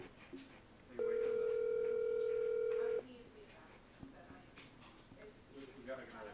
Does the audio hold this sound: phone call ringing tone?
yes